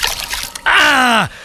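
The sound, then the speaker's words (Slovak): Holy water splashes and spatters over someone for a moment as a captain pours it on them, then a loud, drawn-out cry slides down in pitch as the person reacts. “Prečo ma oblívate, kapitán? To bola svetená voda”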